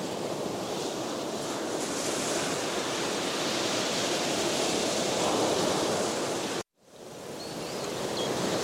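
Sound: ocean waves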